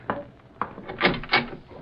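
A wooden door is pulled open, with a few short scraping, rubbing bursts as it moves, the louder scrapes bunched toward the end. No one speaks.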